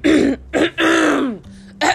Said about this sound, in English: Let me clear my throat.